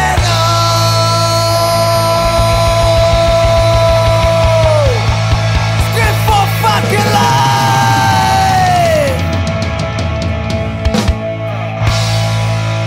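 Loud, dense punk rock by a band from China, with hoarse yelled vocals over driving distorted guitars and pounding drums, the shouting rising and falling in long bellowed phrases throughout.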